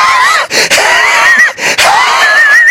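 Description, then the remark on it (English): A voice imitates a big black bear gasping and huffing after eating Tabasco-drenched M&Ms: loud, breathy wheezing gasps with strained squeaky tones, repeated in quick bursts separated by brief pauses for nearly three seconds. “The big old thing started gasping and huffing his darn full head off.”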